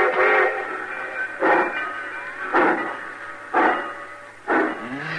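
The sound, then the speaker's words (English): A steam train pulls out with steady, rhythmic chuffs about once a second over a continuous mechanical hum, fairly loud, with no voices. “Cussing train pulling out right on time at once.”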